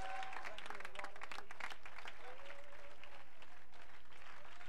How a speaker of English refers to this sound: Somebody clap your hands and magnify the Lord.